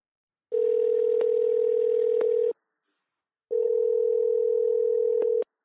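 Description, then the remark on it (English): A telephone dial tone sounds while calling a guest author for an interview, in two long, steady bursts of about two seconds each, separated by a brief pause, loud with faint clicks of dialing and no voices. “So let's see if we can get Jeff on the phone.”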